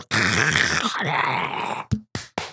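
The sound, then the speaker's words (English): A voice imitates a grill being scrubbed with cat litter: a long, harsh, gravelly rasp for nearly two seconds, then three short, sharp scraping bursts in quick succession. “What does it sound like when you're cleaning the grill with the cat litter?”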